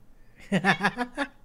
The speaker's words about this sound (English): I'm going to let my cat in. He won't be as noisy if he's in.